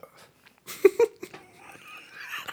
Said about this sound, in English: Burp burns. Yeah, like go. The like late taste burns.